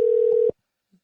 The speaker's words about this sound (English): I'm calling the mobile phone. I didn't mean to get the mobile. I have to hang up and start again.